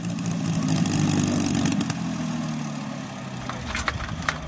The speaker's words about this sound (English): As the sun began to set, Ralph and Cowden came taxiing back in the P-51.